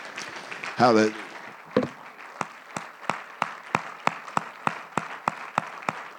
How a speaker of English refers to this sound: Give him a hand clap in Jesus' name.